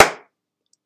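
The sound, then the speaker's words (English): A single sharp slap of a hand dropped onto a tabletop, loud, with a quick decay into silence and no voices. “Lift up your hand and drop it on the table.”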